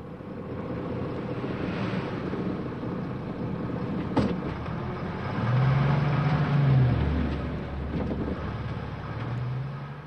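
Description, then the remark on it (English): In Peru, a bus rumbles past a house early in the morning, around 4 o'clock, amid steady wind and engine noise. It blows its horn to wake people: a long, low blast midway, then a shorter honk near the end. “As you can hear here, passing the house, the bus begins in the morning, blowing the horn to wake up these people at 4 o'clock.”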